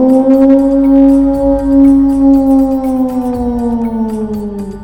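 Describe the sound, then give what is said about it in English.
A person imitates a wolf howl: one long, loud, sustained vocal tone that holds steady, then gradually sinks in pitch over about five seconds, with no talking. “Howl with me, my siblings. Howl to show respect to the great and mighty spirit.”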